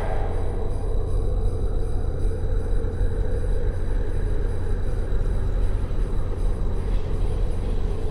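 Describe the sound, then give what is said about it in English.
A steady, low engine rumble drones on without a break from an Air Force car idling outside, its loudness holding even throughout with no voices or other distinct sounds. “What's the Air Force car doing outside?”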